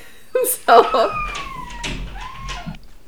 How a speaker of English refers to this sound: I'm not sure we're going to be able to cut any of that background noise out. So I need to explain that my dog is totally fine.